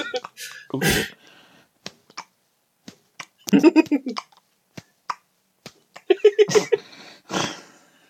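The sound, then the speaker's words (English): A run of sharp taps like wet footsteps, each followed quickly by a light clap, spaced irregularly over several seconds, with short bursts of indistinct voice in between. “You hear the footstep first and then like a slight clap just straight after.”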